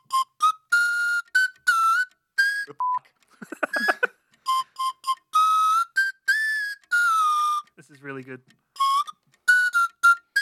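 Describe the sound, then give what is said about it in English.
The Thomas the Tank Engine theme played on a toy whistle during a timed game: bright, buzzy notes in quick rhythmic phrases, loud, with a couple of brief spoken remarks breaking in between. “It's so much harder on this as an instrument. Like, I could whistle it normally.”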